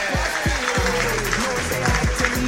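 A crowd applauds loudly and steadily, a dense wash of clapping throughout, with a low rumbling tone moving underneath.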